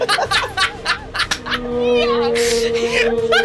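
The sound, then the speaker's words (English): A voice does an imitation of humpback whale song, with long, wavering moans sliding up and down in pitch after a few quick vocal bursts, loud. “And just whale sounds.”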